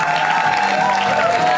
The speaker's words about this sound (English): Amazing comic coming up next. Please already start clapping. Continue the beautiful applause.